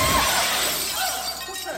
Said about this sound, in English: Or we could just break the glass. Very discreetly. Very discreetly.